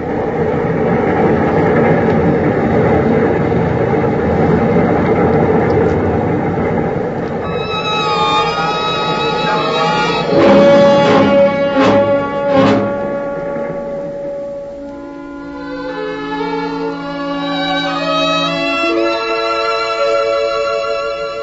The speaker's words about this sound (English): I had watched Hank lean into the sharp, cold wind and disappear into the darkness as his body swayed with the rhythm of the train.